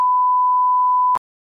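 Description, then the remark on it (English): A single steady electronic beep at a mid pitch, used as a cue to mark an edit point in a recording, holds for just over a second, then cuts off abruptly with a click, leaving near silence and a faint sound at the end. “Gotta have those cues to know where I'm to edit.”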